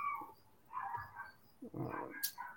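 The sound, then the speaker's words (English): Dogs bark in the background in a few short, uneven bursts of moderate loudness, with no clear talking over them. “Any other fucking dogs?”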